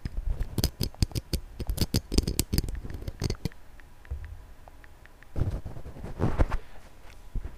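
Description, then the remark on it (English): iPhone keyboard typing clicks: quick, crisp taps arrive in uneven bursts, with a short lull in the middle before another flurry. No one speaks. “I think it's funny that you can hear me typing in the background. iPhone typing sounds like when you pick up stuff in Minecraft.”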